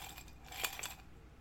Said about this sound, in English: Ice. It is ice.